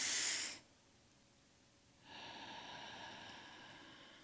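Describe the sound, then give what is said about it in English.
A short, loud breathy rush, a second of near silence, then a long, slow deep breath drawn in, steady and airy for about two seconds; a person breathing in and focusing the breath into the stomach. “Breathing in and focusing your breath on your stomach and see what you feel.”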